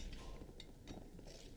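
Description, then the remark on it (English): A few quiet, bright clinks of glasses tapping together in a toast with Green Demon drinks made into a 'Cauldron Demon', spread unevenly over a second and a half, over a low background rumble with no talking. “Once we... are we cheersing? Hold on. Yep. Everyone listen. Cheers, buddy.”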